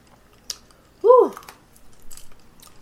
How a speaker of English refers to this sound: Let me take some water on that.